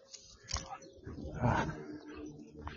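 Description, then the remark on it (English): A dog that is pulling its owner growls, a rough, rumbling sound in uneven bursts that swells to its loudest midway before easing off, with a short sharp note near the end. “As you guys know, I have a really intelligent dog who can't walk straight. Actually trying to pull me.”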